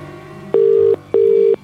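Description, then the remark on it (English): Two short bursts of a steady, buzzing ringback tone on an outgoing phone call to Tom, a quick double ring separated by a brief pause, clear and fairly loud with no talking. “It's actually ringing.”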